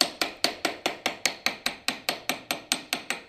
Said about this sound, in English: And then I would take it back to the mandrel and round it out. Make sure that it is the right size it has to be. So I think that should be about a 6. I'm hammering it with my tiny little hammer.